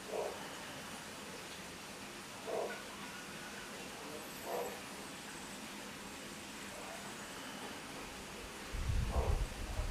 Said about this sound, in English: So for me, in my neighborhood right now, I'm hearing dogs barking in the distance.